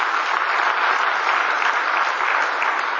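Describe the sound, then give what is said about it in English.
A church audience claps for Jesus Christ steadily and loudly, a dense, continuous wash of many hands with no pauses, holding at an even level throughout without any voices breaking through. “Clap for Jesus Christ.”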